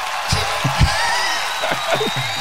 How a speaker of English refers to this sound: Oh my god, wow. They're really cheering for you out here. So much love.